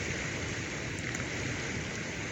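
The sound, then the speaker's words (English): Small waves and currents on a natural lake in downtown Chicago make a steady, even wash of water noise, continuous, with no voices or other sounds over it. “I'm just going to let God's natural water speak for himself, the natural lake here in Chicago. I don't know how well you hear the sounds and the currents and the small waves in the water, But it's quiet right now in downtown.”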